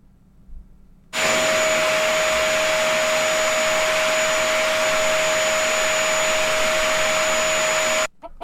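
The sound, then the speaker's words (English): A vacuum cleaner starts abruptly and runs loud and steady for about seven seconds, a constant rushing roar with a high motor whine, then cuts off sharply. No voices. “Yeah, that's a vacuum cleaner.”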